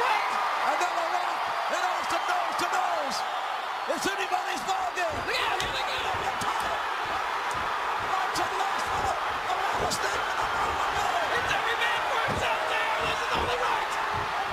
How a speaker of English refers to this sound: But there is a moment in that match where Austin and The Rock meet face-to-face for the first time, really, since their WrestleMania main event in 99. It is an electric moment. Here's just the sound of the crowd reaction in JR's call.